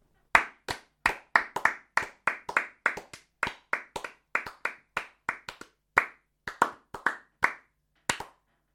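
Celebratory hand clapping: a run of sharp, crisp claps in a quick, slightly uneven rhythm, some doubled up, lasting several seconds with no voices.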